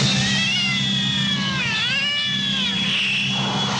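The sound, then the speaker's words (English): A cat lets out a long, drawn-out meow that wavers and bends in pitch, loud, continuing for several seconds like a yowl, with no one speaking. “People used to believe a cat was the devil in disguise.”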